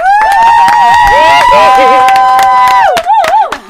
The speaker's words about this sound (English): I'm trying to find an applause, so I think the whole studio's got to go crazy now.